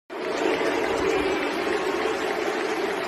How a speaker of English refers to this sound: The sound of England football fans, many cheering, some booing, before the recent friendly against Romania as the team took the knee.